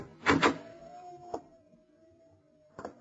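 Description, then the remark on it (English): A door handle rattles with a couple of sharp clicks as someone tries the door, then the door creaks slowly open with a thin, drawn-out squeal, and another latch click follows near the end. “Try the door, Lamont.”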